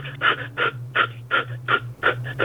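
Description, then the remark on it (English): A person breathes in quick, rhythmic pants, about three breaths per second, each a short breathy huff, fairly loud over a low steady hum. “and then he says, I want you to lie down on the couch and just start this breathing thing this way.”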